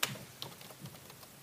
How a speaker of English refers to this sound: Okay, hold on. Yeah, we're having a goofy little typing break.